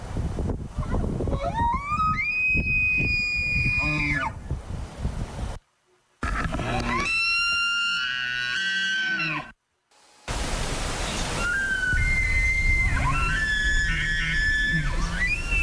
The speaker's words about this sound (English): Kellen played an elk noise. And I was shocked at what it actually sounded like.